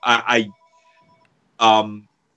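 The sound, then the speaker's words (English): A landline house phone rings with short, loud electronic bursts, a quieter steady tone between them, then another burst after a brief pause. “Whose phone is that? It's my house phone.”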